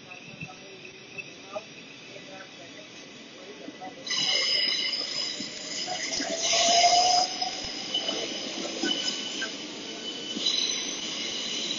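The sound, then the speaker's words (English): Steady rumble of a moving 12-coach passenger train bound for Bedford, heard from inside, with a high metallic whine and wheel squeal that grows louder partway through, the rolling noise continuous throughout. “This train has 12 coaches.”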